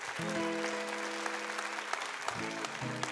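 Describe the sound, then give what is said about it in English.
An audience claps steadily for about three seconds, a dense crackle of many hands, with a few sustained low tones, likely cheers or whoops, rising over it partway through. The applause is for the sound crew and mic crew. “We got to say thanks to the sound crew and mic crew here. They're doing a great job. But give them a hand.”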